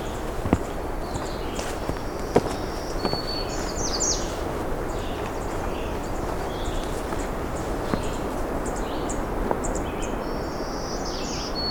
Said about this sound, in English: Ticking black-throated green warblers.